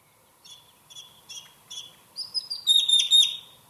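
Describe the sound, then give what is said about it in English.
Grackle calls in Arizona: four short, evenly spaced chirps, then a louder, longer burst of shrill, whistling, metallic notes that builds toward the end. No one speaks. “I love their sounds. Like, they're very tropical sounding.”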